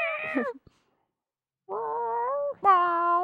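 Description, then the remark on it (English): A voice imitates a cat, starting with one short falling meow, then after a pause two longer, drawn-out mewing cries, fairly loud with no other talk. “I should just hold my cats up to the answering machine and make them go...”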